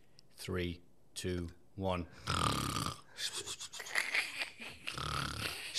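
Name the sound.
imitated snoring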